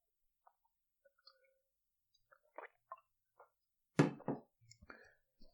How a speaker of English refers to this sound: Oh, pardon me, just let me take a sip of water.